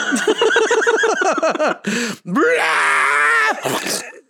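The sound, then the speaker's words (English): A film creature's loud scream, not a hiss, growl or yelp: a run of rapid, warbling squealing cries, then a long sustained shriek with a rough, harsh edge that cuts off abruptly, followed by a brief final screech. “It's not a growl. It's not a yelp. It's like a like this animal is screaming at you.”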